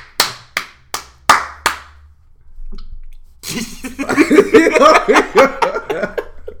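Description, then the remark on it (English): Five sharp, loud hand claps in a quick steady rhythm, followed after a short pause by a burst of laughter and chuckling. “You open your house, your front door, bro. You get clapping, bro.”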